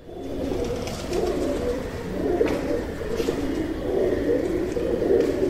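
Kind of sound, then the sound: bird, rock pigeon cooing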